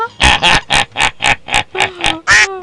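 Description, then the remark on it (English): A person voices a string of about nine loud, nasal quacks in a steady rhythm, each a short buzzy burst, imitating a duck. “Don't quack. That never works.”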